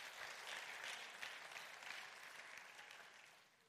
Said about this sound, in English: Let's give the Lord a hand clap of praise for his grace.